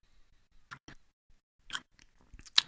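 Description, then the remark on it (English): Quiet mouth noises of someone sipping rye whiskey: a few short, wet slurping bursts spaced irregularly, ending in a slightly louder sip, with no talking. “Well, I just took a sip, and there's more fruitiness there than there was on the nose, and I'm getting some of that delicious cinnamon and sugar kind of taste that I like on a rye.”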